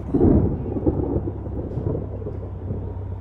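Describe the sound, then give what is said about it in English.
A low, heavy rumble of thunder from a storm clouding up at night rolls in, loudest at the start and then grumbling on steadily, with a faint wash of rain underneath and no voices. “So it was clouding up to storm. Like tonight.”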